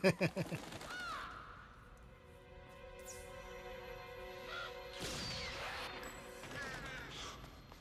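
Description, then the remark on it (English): A crow-like bird gives a rapid burst of four loud, harsh caws, then falls quiet beneath a steady droning, tonal background with a few scattered rustling noises. “Candyman, hi, spoiler, Candyman takes out the bird with a sniper rifle.”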